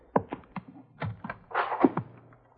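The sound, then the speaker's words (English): A broken, loose window shutter bangs against a house in the wind, a string of irregular hollow thunks and knocks with a brief rattling clatter midway, moderately loud and with no voices. “Window shutter, Jace. Wind's banging it against the house.”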